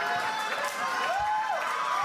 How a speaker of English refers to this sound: Drink it in. Drink it in. An applause break.